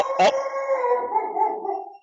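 A single drawn-out dog-like howl made by goblins, opening with a short sharp yelp before settling into a long, steady wail that slowly fades. Clear, with no talking.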